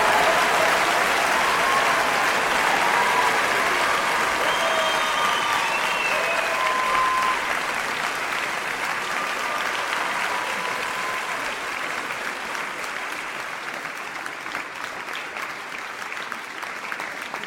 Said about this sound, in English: The referee is waving his arm, and this fight is over. Tommy Bronson wins in dramatic fashion, and the crowd is going wild for him. What an amazing comeback.